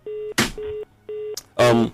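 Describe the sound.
A mobile phone beeps in a repeating pattern, three steady electronic tones in quick succession, separated by short bursts of noise, with a voice speaking near the end.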